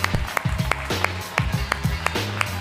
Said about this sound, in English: Let's clap for the guys you just saw working over there.